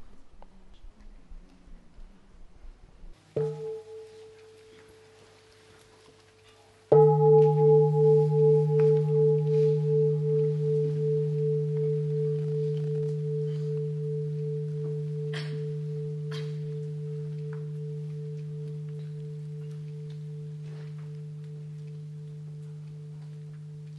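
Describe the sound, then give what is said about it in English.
A meditation bell is lightly tapped once, then struck fully a few seconds later, its deep, warm tone humming with a gentle wavering pulse as it slowly fades over many seconds. “You can do sitting meditation, total relaxation in that place, and listen to the bell.”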